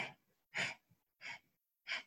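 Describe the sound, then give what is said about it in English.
Four short, breathy exhales puffed out one after another at an even pace during a seated breathing exercise, each a brief rush of air, separated by quiet gaps. “And then exhale in 4 equal parts, sniffs.”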